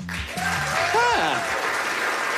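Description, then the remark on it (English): Scattered applause from a few members of a comedy show audience, a steady patter of claps that stays fairly even throughout, with a few voices calling out or cheering briefly underneath. “A few of you guys clapping, some of you not.”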